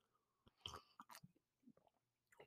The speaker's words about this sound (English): I'm going to take a sip of coffee for a second because I already feel my voice starting to go to shit.